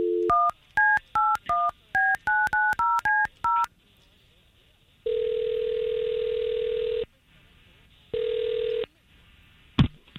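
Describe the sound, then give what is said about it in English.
A quick run of about eleven touch-tone beeps as morning radio hosts dial a man's phone number, then a long ringback tone, a pause, and a second shorter ring, all clear with no talking. “you gave us his phone number, and we're going to try to call him.”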